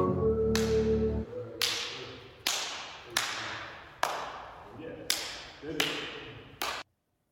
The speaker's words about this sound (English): So let us slap hands.